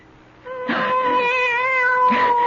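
A cat lets out one long, drawn-out meow lasting nearly two seconds, fairly loud, with a steady wavering tone and no talking around it.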